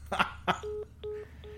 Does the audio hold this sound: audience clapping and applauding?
no